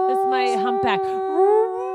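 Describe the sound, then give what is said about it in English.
A person imitates a humpback whale call with a sustained, wavering moan that slides up and down in pitch. It is fairly loud for about two seconds, with no other sounds. “That's your whale noise?”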